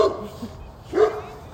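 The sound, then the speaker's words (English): A neighbour's puppy gives two short, high-pitched yappy barks, one at the start and one about a second later, moderately loud against a quiet background. “Oh, neighbour's dog. Puppy. Live on the pod.”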